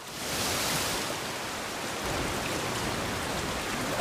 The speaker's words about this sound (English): The rain is getting worse!